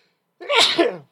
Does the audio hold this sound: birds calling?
no